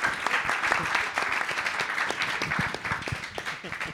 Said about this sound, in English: Guys, let's give Tom a round of applause.